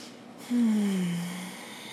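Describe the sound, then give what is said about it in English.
A single audible breath out through the nose, as in alternate nostril breathing, with a low droning, slightly voiced tone that fades over about a second. “That is alternated nose breathing.”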